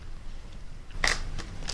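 Someone chewing fruit snacks: three short, crisp bites at uneven intervals, quiet against a low steady background rumble, with no talking.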